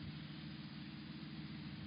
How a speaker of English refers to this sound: Car coming. I hear it.